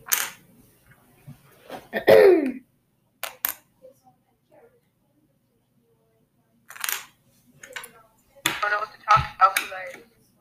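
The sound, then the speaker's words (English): A USB cable for a portable keyboard being handled and thrown around, making scattered sharp clicks and taps in small clusters with quiet gaps between, plus a brief throaty vocal sound early on. “I'm just throwing around a thing, a USB that connects to my, that connects to my portable keyboard.”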